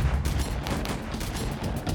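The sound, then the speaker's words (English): A rapid volley of distant gunshots, a dozen or so sharp cracks in quick, uneven succession over a low rumbling background, with no voices. “But as his rough hands touched the metal, gunshots exploded in the distance.”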